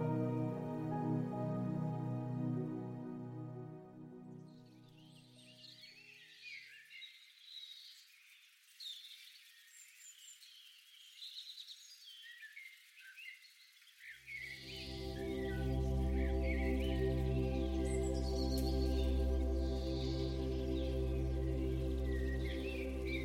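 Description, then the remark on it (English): Birds chirp and call back and forth in a lively, scattered chorus, heard alone for several seconds between stretches of soft, sustained music that fades out and later returns beneath them. “The birds are chirping and calling out to one another.”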